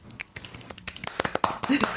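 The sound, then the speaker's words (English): Several people clap after a winner is announced, starting with scattered sharp claps and thickening into a quicker, irregular patter of crisp smacks. It's moderately loud, with no voices. “Everyone's clapping now.”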